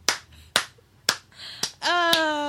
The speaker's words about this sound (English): I think I'm getting a round of applause. Actual standing ovation for that one.